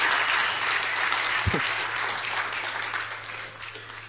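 Sustained applause from a crowd of worshippers, a dense steady wash of many hands clapping for about four seconds, with a brief low thump midway and the clapping tapering slightly at the end.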